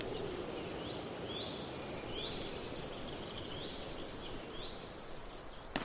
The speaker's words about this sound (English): Just heard a willow warbler, which is another migrant bird. So that's three chiff-chaff, black cap, willow warbler.